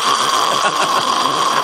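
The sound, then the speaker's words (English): A voice imitates loud snoring: one sustained, raspy, rattling snore lasting over a second, loud, with no talking around it. “because the guy at top with me snored like a train.”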